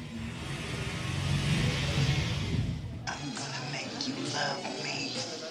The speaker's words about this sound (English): Yep. A car drives up and … states, I'm going to make you love me.